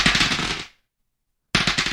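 Someone idly playing with dice during a tabletop role-playing game: dice rattle and clatter in a fast, dense burst of sharp clicks that cuts off abruptly, falls silent for under a second, then starts up again just as loud.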